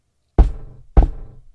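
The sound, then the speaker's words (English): A woman knocks twice on a floor, about half a second apart, each a sharp low thud that rings out briefly. Fairly loud, with no voices. “She said, and knocked twice on the floor.”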